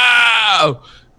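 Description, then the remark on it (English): A single loud, strained scream voiced by a person imitating Jamie Lee's 'let it burn' scream from Halloween Kills, raw and throaty, held for under a second before its pitch drops and it breaks off into a faint breathy trail. “It's so powerful with this guttural, traumatized scream of like, let it burn!”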